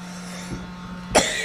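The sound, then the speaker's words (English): A harsh cough bursts out loudly after a faint earlier one, part of a coughing fit from a bug in the throat, over a steady low hum with no talking. “Oh, man. I can't get it to stop.”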